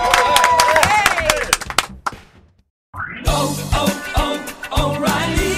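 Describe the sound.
A bar crowd at Busker's Bar in Dublin claps and cheers in a dense burst with whoops and shouts, fades into a brief silence, then another busy wash of voices and noise follows.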